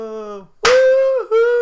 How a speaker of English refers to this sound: I have so many choices of clap. How good's that?